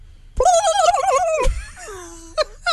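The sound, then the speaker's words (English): A person imitates a turkey gobble by jiggling their throat, ahead of Thanksgiving: a rapid, warbling burst of wobbling high-pitched vocal tones, then a sliding descending squeal and two short sharp yips at the end. “As we head into Thanksgiving, we have a bunch of listeners here lined up who want to show off their gobbler, their turkey sound effect”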